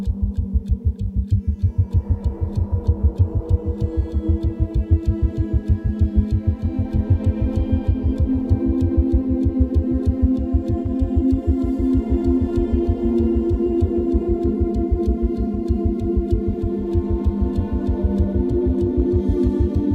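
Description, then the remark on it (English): The opening of a film score: a steady, rapid clock-like ticking pulses throughout, layered over a low droning hum and sustained, slowly swelling tones that build an eerie, tense atmosphere. No one speaks. “That eerie, creepy clock ticking, you hear these tones that are going da dee da da.”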